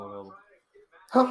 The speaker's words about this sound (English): Bless you. Thank you.